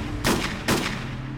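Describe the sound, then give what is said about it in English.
Two sharp sniper rifle gunshots ring out about half a second apart, each a loud crack with a brief decaying tail, over a low steady background rumble and no voices. “In Carlsbad, California, 47-year-old Greg Mulvihill has miraculously survived a gunshot wound to the chest delivered by a sniper who ambushed him on a dark dirt road.”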